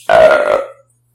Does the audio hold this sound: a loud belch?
yes